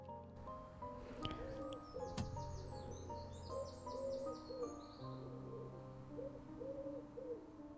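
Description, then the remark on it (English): A wood pigeon coos in a steady, rhythmic series of soft, low phrases, while smaller birds chirp and twitter more faintly in the background. “There's the wood pigeon.”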